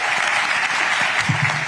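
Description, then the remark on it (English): A standing crowd wearing masks applauds steadily, dense overlapping claps forming a continuous bright wash of sound, with a faint voice briefly audible underneath near the end. “They all stand up. They all clap.”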